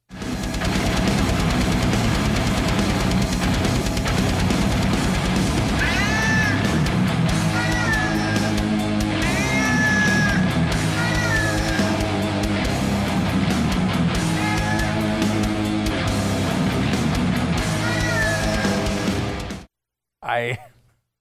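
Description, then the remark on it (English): A new song by a heavy metal band, played with cats: a loud, dense track with distorted guitars and pounding drums, while cat meows rise and fall over the music every few seconds. It stops abruptly near the end. “Before we head out today, there is a new song from a metal band that is, it's Cats. Cats playing heavy metal.”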